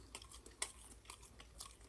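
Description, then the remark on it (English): Chewing of a Brussels sprout, a steady run of soft, crunchy, moist bites repeating about every half second, with no talking. “This guy's a chipmunk. Very dude, nice. The way he swallows and his hair shakes.”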